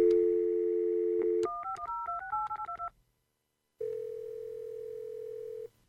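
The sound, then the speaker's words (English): A steady dial tone, then a quick run of keypad beeps as a number is dialed, a brief pause, and a single long ringing tone on the line, with no voices. “Well, what was that? Okay, where's my phone?”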